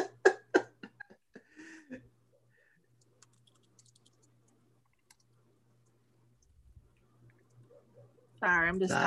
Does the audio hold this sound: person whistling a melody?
no